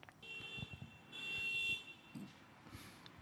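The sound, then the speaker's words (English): Car horns blare outside on the street, a long sustained honk swelling and fading over a low traffic rumble, with a few shorter blasts after it. “Yeah, I know, they're beeping. I'm waiting for the jackasses to pass by.”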